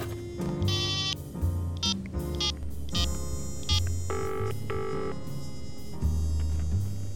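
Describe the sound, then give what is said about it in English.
A series of short electronic telephone tones as a number is dialed from a pulled-over car to call a nursing home, followed by longer, steady ringing tones, heard clearly over a low background hum with no one talking. “I decide to pull over and phone Vincent David E. O'Brien's nursing home to tell them I'd be late.”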